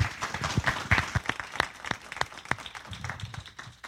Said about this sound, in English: Let's have one more round of applause for our speakers.